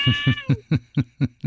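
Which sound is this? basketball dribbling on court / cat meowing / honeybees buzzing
cat meowing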